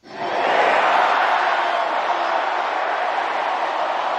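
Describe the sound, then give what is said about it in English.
A crowd of 50,000 at a Dodgers home baseball game roars and cheers, shouting five words in a sustained, dense wall of voices that rises quickly and holds steady at full volume for several seconds. “He exhorted the crowd of 50,000 people to shout those five words.”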